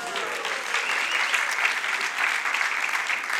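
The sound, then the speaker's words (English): A crowd claps steadily for a couple's 22nd wedding anniversary, a dense, even wash of many hands with no single claps standing out. It holds at a moderate level for the whole stretch, with no one speaking over it. “Actually, you should give her the applause, because I'm sure I'm the more difficult one in that process.”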